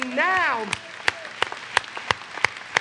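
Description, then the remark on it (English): A voice calls out briefly, then a church audience claps in a steady rhythm in praise of Jesus Christ during a sermon, seven sharp claps evenly spaced about a third of a second apart, moderately loud and reverberant. “And now, if you're going to clap, you need to clap for that.”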